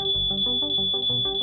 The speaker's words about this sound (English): In offices across major cities, workers were being evacuated due to smoke alarms triggered.